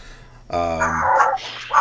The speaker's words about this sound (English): Nice. I didn't know you brought the dogs with you.